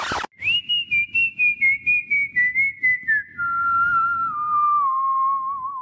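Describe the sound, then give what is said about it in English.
A clear human whistle by the song's own artist carries a slow, gliding melody that drifts gradually downward, played over a steady drumbeat and bass in a song, with no voices. “One thing I have to mention is the whistling.”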